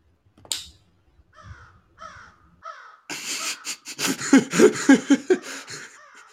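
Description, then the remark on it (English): A crow caws: a few separate, spaced-out caws, then a louder, dense flurry of harsh, rapid cawing that carries to the end. No one speaks. “The much talked about comedy crow.”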